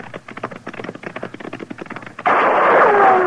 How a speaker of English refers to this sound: Hey, he's shooting at us. Yeah. There's a hole up ahead,